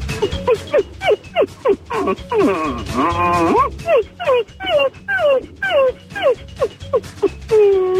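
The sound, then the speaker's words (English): A person imitates a begging dog with a long run of high, pitch-sliding whimpers and whines, fairly loud, rising and falling in quick repeated bursts with no other talk. “All right, I'm going to beg in dog language.”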